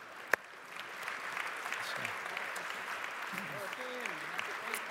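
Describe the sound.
Sustained applause from a large crowd, dense and steady clapping filling the space, with faint voices and cheers mixed in beneath it, after a sharp knock at the start.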